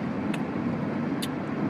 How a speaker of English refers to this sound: This is pretty dangerous what I'm doing right now. Eating a Creemee, recording a voice memo, steering, driving. Fortunately, there's not a lot of traffic.